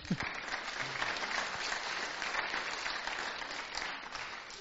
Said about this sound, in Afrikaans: ek vat die hande klap hoor, enige tyd van die dag.